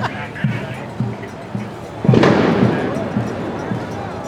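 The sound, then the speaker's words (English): A sharp firework blast bursts out and trails off into a crackling, rumbling decay, set against a steady rhythm of dull low thumps and faint background voices. “Fireworks.”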